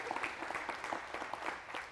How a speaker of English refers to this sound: But wasn't that a wonderful... Give another hand clap there since I interrupted it.